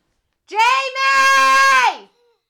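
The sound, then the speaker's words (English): A child's high-pitched scream rings out from another room, loud and sustained for about a second and a half, dipping briefly near the start before the pitch slides down as it fades. “Oh, they're screaming in the other room.”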